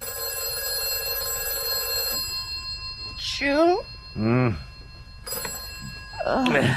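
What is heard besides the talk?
telephone bell ringing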